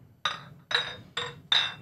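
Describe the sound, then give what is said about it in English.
Four sharp clinks of containers of Finnish Supernova drink knocking together in a toast, spaced a bit under half a second apart, each bright ring fading quickly. Moderately loud, with no talking. “Clink. Clink.”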